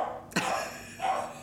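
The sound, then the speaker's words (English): Dogs give two short, sharp barks a moment apart, the first abrupt and punchy, the second a bit softer and drawn out, with no one talking. “Dogs.”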